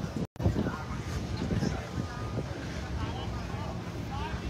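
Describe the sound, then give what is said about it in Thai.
Strong wind buffets the microphone in a steady, loud, rumbling roar that persists throughout, with brief gusty surges and muffled voices faintly underneath. “โอ้ยพักแป๊บลมแรงไม่ไหว”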